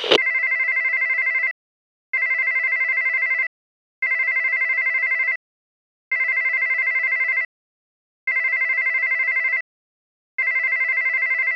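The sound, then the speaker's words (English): A phone's ringback tone during an outgoing call repeats steadily, six long electronic rings separated by short silences, clear with no voices over it. “Can we make a phone call?”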